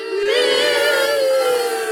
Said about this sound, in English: Those are all your future kids booing you, by the way.